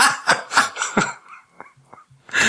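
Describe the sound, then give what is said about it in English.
A dog barks three times in quick succession, makes a couple of softer, higher yelps after a pause, then lets out one more loud bark at the end. “Dog. Dog.”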